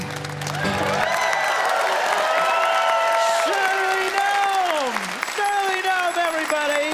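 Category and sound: crowd, audience applause and cheering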